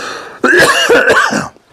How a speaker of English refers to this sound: I got a little cough.